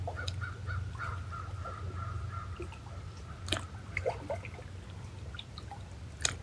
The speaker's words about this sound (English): Raven flew over. Always a treat. Always honored. This powerful totem guide.